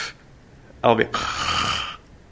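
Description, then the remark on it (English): A short voiced sound gives way to a loud, hissy inhaled breath lasting nearly a second, as a person deliberately demonstrates a voiceless pulmonic ingressive sound, drawing air in sharply. “Pulmonic, ingressive, voiceless.”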